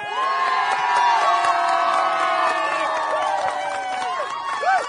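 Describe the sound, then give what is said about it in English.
A loud live crowd at Legoland, California cheers and whoops continuously, many voices shouting and yelling together in a sustained, rising-and-falling roar with high-pitched individual shrieks cutting through. “That's made that them sound impressive. Like a real crowd.”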